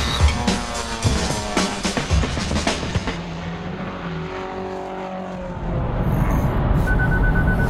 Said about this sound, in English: That beeping tells you that I've been launched back into the future from those wonderful cars of the past. Once again, I'm driving my, well, it's not even mine, but I'm not even driving, I've been driven by the Hyundai Ioniq, now on the M1,